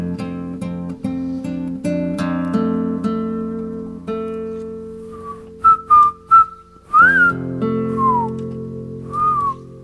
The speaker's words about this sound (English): I probably think you're whistling because it sounds so good. Pretty good at whistling.